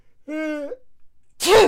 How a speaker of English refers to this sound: And hold on, I gotta sneeze.